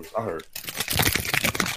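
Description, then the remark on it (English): A brief vocal sound, then a voice imitates jingling keys with a rapid, breathy, rattling hiss that continues steadily for over a second, fairly loud. “So like, all I heard was the fucking keys, like this.”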